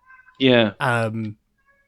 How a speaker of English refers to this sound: I can hear the cat in the background there. Yeah, he's got a few things to say about the …, I think.